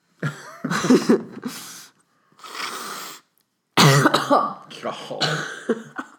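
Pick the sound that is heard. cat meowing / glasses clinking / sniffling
sniffling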